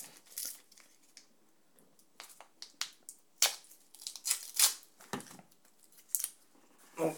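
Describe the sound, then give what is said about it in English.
Crisp crinkling of a paper sweet wrapper, its paper welded together, being pulled open, with irregular bursts of rustling and tearing sounds over several seconds. “Oh, how do you even open this? It seems welded. The paper's all welded together.”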